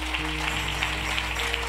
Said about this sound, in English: If you've had a part in this tent revival working, putting things together, would you just lift your hand? Now, if your hand's not lifted right now, I want you to give these folks a hand clap.